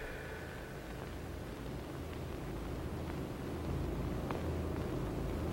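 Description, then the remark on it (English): A dense, unbroken wash of white noise static hisses at a steady level throughout, rumbling underneath, with a few faint ticks scattered through it and no voices. “When the white noise receded, May's voice faded in.”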